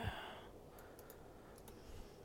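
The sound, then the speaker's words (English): A heavy, breathy exhale at the start, then a low hiss of quiet breathing with a few faint clicks, with no one speaking. “We hear you breathing heavy.”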